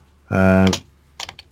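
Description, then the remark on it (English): A few quick, light computer keyboard taps clatter near the end as someone types a search into Google, following a short sustained hum from a voice. The typing is brief and irregular rather than a steady run. “I don't know why I just went on Google typing Google.”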